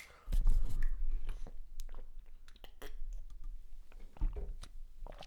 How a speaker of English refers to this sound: Hold on, I gotta put the mic down. I gotta open up this water. I gotta drink this water. Oh my god.